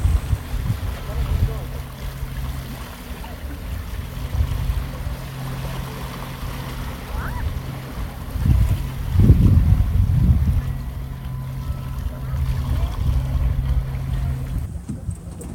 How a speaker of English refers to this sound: Later, my family and I take a boat ride on the waters off Isle of Ho, a rugged island that also contains a portion of Acadia.